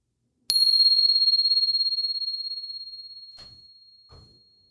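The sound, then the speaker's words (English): A single meditation bell is struck once at the start of a meditation practice, ringing out with a clear, pure tone that sustains and slowly fades over several seconds, with a couple of faint soft knocks near the end. “And here comes the bell.”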